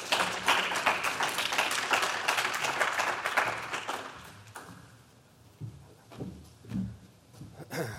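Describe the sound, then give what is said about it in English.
An audience applauds a speaker with a dense, steady patter of many hands clapping, which fades out about halfway through, leaving quieter, scattered sounds afterward. “But warm round of applause”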